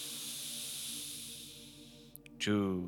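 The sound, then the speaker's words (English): A long, steady breath drawn in through the nose during a guided breathing exercise, a soft airy hiss lasting about two seconds, before a voice starts speaking at the very end. “And make sure that when you breathe in, you're breathing in through your nose and then you're letting your breath out through your mouth.”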